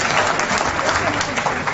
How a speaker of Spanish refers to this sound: ¿Qué aplauden ustedes también? No entiendo, la gente está loca.